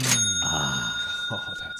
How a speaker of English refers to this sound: We have to pause because just a second. Let me get the cash register ready.